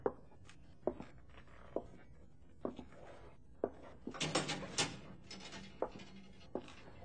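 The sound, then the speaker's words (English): Slow, evenly spaced footsteps echo as a person walks to a cell in the far corner, then the cell door rattles and swings shut with a brief metallic clatter as they close it behind them, before the steps resume. No one speaks. “I wish you to walk to that cell in the far corner, go in, and close the door behind you.”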